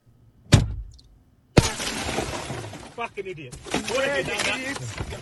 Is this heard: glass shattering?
yes